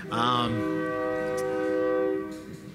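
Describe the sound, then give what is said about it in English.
A train horn blares one long, steady, loud chord for about two seconds after a brief wavering start, then fades as the train arrives. “While we're tasting the wines, I think our train is here.”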